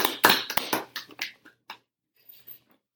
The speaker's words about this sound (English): Well, we have an applause button. Oh, there it is.